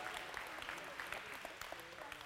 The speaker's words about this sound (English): Come on, a little applause for the movie trivia.